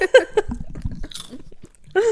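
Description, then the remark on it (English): Crunchy chewing of a biscuit, with irregular crackling bites in the middle and brief bits of voice at the start and end. “Very crunchy too.”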